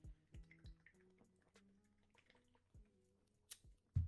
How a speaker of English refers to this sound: I'm going to sip before this.